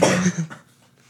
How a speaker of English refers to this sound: Don't cough.